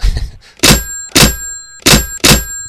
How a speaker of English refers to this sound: So I actually got my old bell phone from the garage and brought it up here and put a microphone next to it and slammed it down.